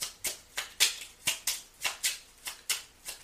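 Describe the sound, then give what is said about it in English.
Divine Doors oracle cards being shuffled by hand: a steady series of about ten crisp, papery swishes, roughly three per second, hissy and bright, with no talking. “So let me go ahead and pull two Divine Doors cards.”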